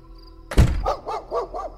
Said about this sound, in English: Outside the home, Asta barked again.